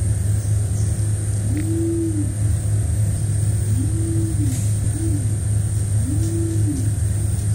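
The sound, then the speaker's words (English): Nicobar pigeon cooing: four low, soft, rising-and-falling coos at uneven intervals, partly masked by a loud, steady engine-like rumble throughout. “I want to play the sound of the Nicobar pigeon, which is its closest living relative.”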